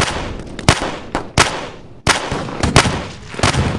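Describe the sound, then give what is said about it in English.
Heavy handgun shots crack out loudly, about four of them spaced irregularly across a few seconds, each a sharp booming blast over a dense, chaotic background of noise. “Does he have a hand cannon up here?”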